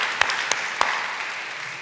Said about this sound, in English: Is that awesome? I want to clap my hands for that because I don't deserve that.